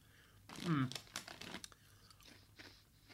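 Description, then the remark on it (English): Crinkling of a bag of durian-flavoured crisps followed by a few loud, crisp crunches and chewing, with a brief vocal sound near the start and quieter rustling trailing off. “felt bad, like, oh, I've missed the chance to have a really fun segment on the podcast with me eating disgusting crisps that I don't like.”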